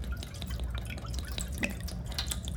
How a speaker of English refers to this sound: Tell me when you're ready, and I'll pour the juice.